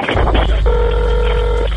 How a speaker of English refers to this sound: The 911 call came in around 10:50 p.m. It's a female hyperventilating. Okay, calm down. Where are you at? And then the phone goes dead.